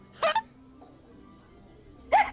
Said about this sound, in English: Hiccups.